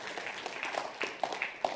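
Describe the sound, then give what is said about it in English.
An audience claps steadily in response to the announcement of 27 short-term missions for the coming year, a dense patter of many hands sustained without pause, moderately loud with a few sharper claps standing out. “You can clap for that or whatever you want to do.”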